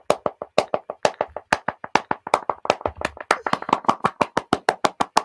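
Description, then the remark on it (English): Sharp hand claps ring out in a rapid stream, uneven at first and then settling into a quick, steady, accelerating rhythm of dozens of claps with no talking. “Clappity, clappity, clap, clap, clap. Yeah, I love it. Endless claps.”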